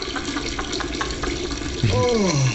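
Water trickles and splashes steadily, like someone peeing in a shower, a continuous stream. Near the end a brief, falling, voice-like tone rises over it.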